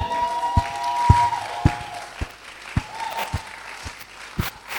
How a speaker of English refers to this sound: Am I still preaching here? If I'm preaching, give the Lord a mighty clap.